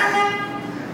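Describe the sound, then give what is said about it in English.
A truck horn blares in one steady, sustained tone lasting about a second, loud and brassy with a rich harmonic ring and no talking over it. “truck. Not beeping at me.”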